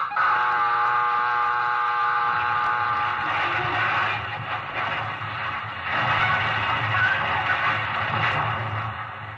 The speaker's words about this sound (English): First, you've heard the collision alarm.